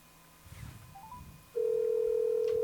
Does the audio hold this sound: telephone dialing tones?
yes